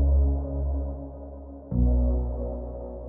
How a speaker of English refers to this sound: It's a great sound that, and unusually for a bass element, it's got a load of reverb and delay on it, which adds to its character.